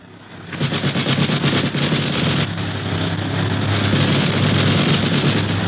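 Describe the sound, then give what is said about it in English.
Sustained, rapid machine gun fire from a plane shooting at another plane in the air rattles on loudly for several seconds, a dense chatter of bursts over a steady low engine drone, with no voices. “the boys prepare for trouble, and not a moment too soon, for the other plane opens fire with a machine gun.”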